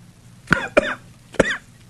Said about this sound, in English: I now have the whooping cough.